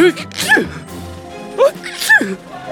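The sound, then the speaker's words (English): Two loud, theatrical sneezes from a mummy, about a second and a half apart, each a voiced rising gasp snapping into a sharp breathy burst, with no talking in between. “Did that mummy just sneeze? Good lord, it sneezed!”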